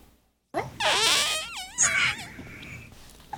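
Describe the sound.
A voice imitates a thin, high-pitched fart, a loud squeaky buzz whose pitch wobbles and warbles for nearly three seconds before trailing off, with no talking.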